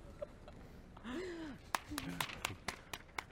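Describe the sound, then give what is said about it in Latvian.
A scattering of sharp, distinct claps from an audience rings out in the second half, sparse, following a short vocal sound from a person. “Aplausi. Skatītāji, paldies.”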